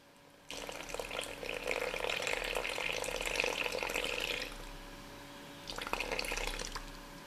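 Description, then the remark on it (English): About 90 milliliters of water pours in a steady stream into flour for bao dough for about four seconds, pauses, then a shorter second splash of pouring follows. No one speaks. “I'm using about 90 milliliters of water to start with, and later, depending on the texture of the dough, I might add another tablespoon or so of water as well.”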